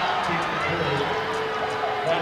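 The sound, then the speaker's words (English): A large basketball crowd voices its displeasure at a foul call, a steady, loud wash of jeers and grumbling voices that holds without a break for the whole moment. “Crowd here didn't like it.”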